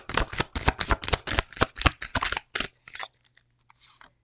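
Tarot cards are shuffled in a quick run of about a dozen crisp, papery riffles. The bursts soften and thin out into a few scattered light flicks before stopping.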